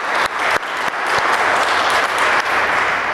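A crowd applauds steadily, many hands clapping in a dense, loud wash of noise that holds level for a few seconds without any talking.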